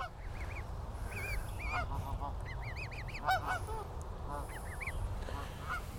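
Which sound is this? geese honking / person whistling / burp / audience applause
geese honking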